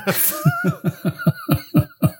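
A rapid, regular run of about nine short, rasping coughs, close and fairly loud, with no talking over them.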